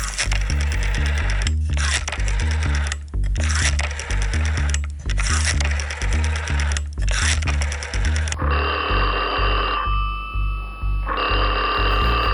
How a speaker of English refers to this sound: The phone rings.